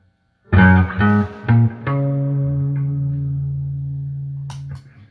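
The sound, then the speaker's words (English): An electric guitar plays a few quick picked notes, then lets a chord ring out through an amp, sustaining with a lush reverb tail before a small click near the end. No voices. “They almost sound identical other than the reverbs. Roll the reverb back a little bit on Tone Master.”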